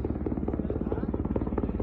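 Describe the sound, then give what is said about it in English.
A helicopter flown by the Taliban around Kabul, its rotor thumping in a rapid, steady chop, with a deep engine drone underneath, loud throughout. “Yeah, yesterday they were flying around our helicopters. Here's some video from Kabul.”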